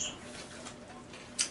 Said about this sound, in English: Apparently, we got birds here at the Tiki Bar.